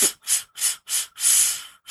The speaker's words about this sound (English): So there's four little short bursts of air, one after another.